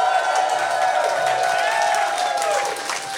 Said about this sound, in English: Pretty good. There are too many people clapping.